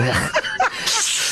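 snake hissing

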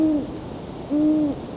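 owl hooting

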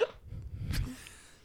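hiccup

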